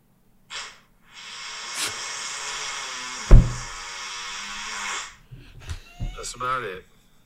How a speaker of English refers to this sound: That was a comically loud fart. did I hear that? It's like, that was real. comically loud. I mean, there's a video. It's real. Yeah, that was a leaky one.